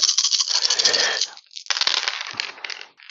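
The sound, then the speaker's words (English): Dice rolled for an attack in a game clatter and tumble across a hard surface in a continuous rattling burst, pausing briefly before a second bright, clicking roll that settles out. “Okay, so rolling for the attack from the spirit of air.”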